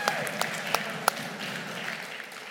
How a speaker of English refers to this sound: Give a little clap of praise that we have air conditioning in here, right?